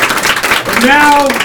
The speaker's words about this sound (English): So round of applause